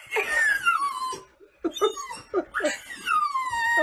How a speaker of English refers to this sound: It's pretty surprising for Sadie to howl like that because she doesn't really actually do that very often, and she really only does that for Rolo. To like throw her head back and howl like that, it's not a common behavior for her.